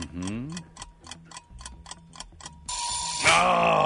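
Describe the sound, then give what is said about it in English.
A quiz countdown timer ticks steadily, about ten crisp, evenly spaced ticks, then a loud, bright buzzer blares to end it. A brief voice sounds at the very start. “Oh, timer, gotcha.”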